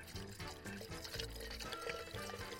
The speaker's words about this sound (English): Then we add some sparkling water.